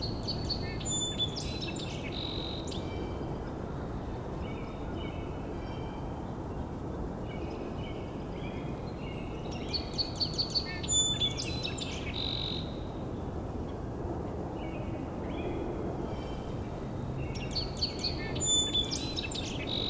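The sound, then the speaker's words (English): Sandhill crane calls come in three short rattling bursts spaced several seconds apart, fairly faint over a steady, rushing background noise, with no one talking. “Sandhill crane is getting quieter again, so I don't know if they're looping back.”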